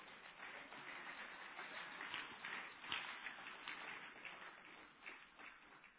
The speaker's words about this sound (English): Clap your hands for my members.